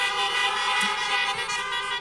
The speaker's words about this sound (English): Woo-hoo! Let's give a honk for all the moms.